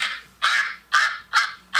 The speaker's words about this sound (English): Actual duck sounds. Duck Hodges. Actual duck sounds.